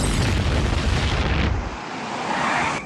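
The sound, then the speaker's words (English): A loud explosion booms with a deep, heavy low-end rumble for over a second, then gives way to a hissing, crackling debris wash that fades out quickly. No voices are heard. “That sounded like an explosion at the old Simpson place.”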